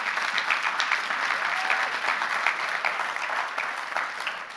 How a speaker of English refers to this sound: Yeah, you clap for that.